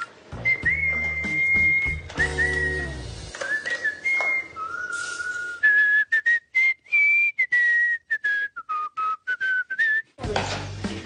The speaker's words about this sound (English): Was that you whistling? That was me. Was I whistling? Yes. What were you whistling about? I whistle when I'm happy, so I must be in a good mood.